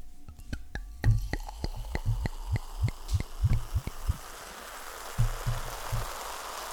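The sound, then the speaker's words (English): A drink is poured into a glass next to the microphone for ASMR, with a rush of fizzing bubbles that builds steadily while quick crackling pops and soft low splashes scatter throughout. No one speaks. “So I'm going to pour mine because he's only having a sip.”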